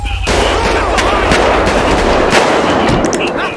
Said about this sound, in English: Shots fired. One suspect down, and the dog down.